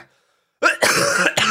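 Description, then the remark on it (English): A loud cough in a few harsh bursts after a brief silence, rough and throaty like clearing the throat, with no talking over it. “Sorry, I coughed on my words.”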